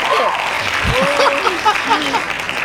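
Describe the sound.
A steady burst of hand clapping from a group fills the whole clip, with excited voices and brief whoops rising over the dense applause.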